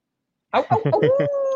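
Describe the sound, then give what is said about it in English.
A human voice imitates a wolf howl, starting with a few quick choppy yelps that slide into a sustained, rising wail, loud after a brief silence. “The he wolf.”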